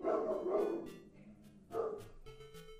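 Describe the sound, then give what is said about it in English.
Dogs bark in a quick series of sharp, fairly loud yaps, with a short lull in the middle before a few more barks follow, some trailing into a whine. “Oh my god, dogs.”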